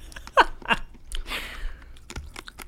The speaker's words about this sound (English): Man, they're like super crunchy. So I can hear that from over here. They kind of taste like those like nonpareils.